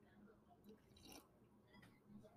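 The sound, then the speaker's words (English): Soft, wet slurping and chewing noises from a boy eating his breakfast, coming in a few short bursts over a low background murmur of iPad music. “Hey, I apologize right now if you hear a little slurping and iPad music going on in the background.”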